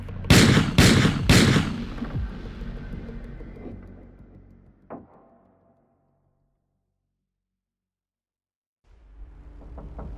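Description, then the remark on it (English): Three loud gunshots from a gun with its flash suppressor removed crack in quick succession, followed by a long rumbling echo that fades out, one fainter bang, then near silence before a low rumble returns. “The gunshots lit up the demons like strobe lights in a Halloween house of horrors.”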